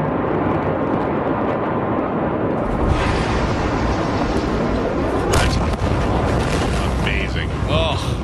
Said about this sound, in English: You know, yesterday I got the alert that said there was a large explosion in Beirut, and I was like, whatever.